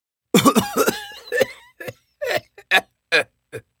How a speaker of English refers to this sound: Again, more coughing.